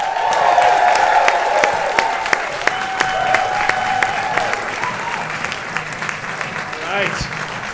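Steady audience applause at a comedy show at the Bell House as comedian Matt Bronger is welcomed to the stage, a dense wash of many hands clapping continuously with a few whoops and cheers rising over it, holding fairly loud throughout before easing slightly at the end.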